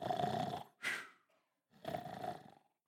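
A person snores in two long, rasping breaths separated by a short pause, with a brief snort between them. The sound is close, fairly loud and has no talking over it.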